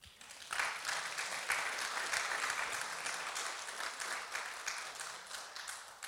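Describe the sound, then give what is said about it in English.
A crowd breaks into applause just after the start, many hands clapping in a dense, steady wash that holds at a fairly even level until the end, with no one speaking. “I'd be clapping for that.”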